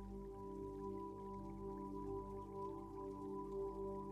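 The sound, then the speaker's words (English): Soft, steady patter of falling raindrops, faint and continuous, layered over a low sustained ambient drone with no voices. “Feeling safe, an inner peace that makes you feel a desire to rest deeply while listening to the slowly falling drops of the rain.”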